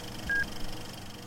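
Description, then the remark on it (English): A single short electronic beep after a countdown, the cue to press play and start the 1984 film Gremlins: a steady mid-pitched tone lasting a fraction of a second sounds over a quiet low hum, with nothing else following. “Sinkers, press play at the beep after the countdown.”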